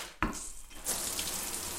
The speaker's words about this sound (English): Stepping into a hot shower to dispel some of the chills that have come with your fever